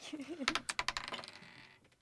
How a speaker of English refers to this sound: So roll a d20. Okay. And add plus two to it. Oh. And I'm rolling.